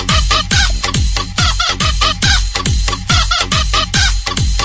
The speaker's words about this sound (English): Was that somebody laughing? No, it's the... I forgot to turn off the chicken. It was our sound effects continuing.